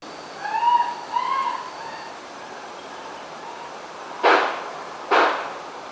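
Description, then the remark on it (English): High, wavering screams rise and fall for a couple of seconds, then after a pause two loud, sharp gunshots crack out about a second apart, with no talking. The audio is from a video shown to a jury in a murder trial, with the pops identified by investigators as gunshots. “Also presented to the jury this week was a dramatic video where screaming can be heard, followed by three loud pops, which investigators identify as gunshots.”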